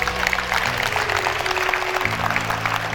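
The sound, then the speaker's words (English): A church audience claps steadily for those who gave their hearts to Jesus that day, a dense, even wash of many hands that holds at the same loudness throughout, with soft sustained low musical tones humming underneath. “The reason those people are clapping is because they know what a big decision this is.”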